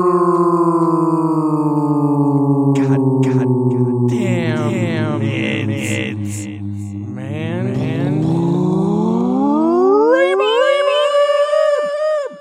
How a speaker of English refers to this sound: You love reverb. I love reverb. He loves it. Can I get a little reverb in here?